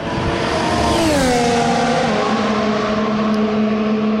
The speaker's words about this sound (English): the noise you've just heard is Lewis Hamilton zipping past the pits in his all-new Silver Arrow